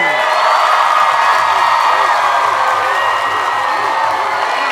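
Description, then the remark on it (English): A loud crowd at a contest cheers and whoops continuously to pick a winner, a dense wall of shouting voices that stays steady for several seconds without letting up. “I want to hear from the crowd. Should it be Kermit and Pepe?”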